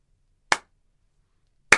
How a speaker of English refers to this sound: I think that clap was a little too fast. I think maybe we should slow that one down.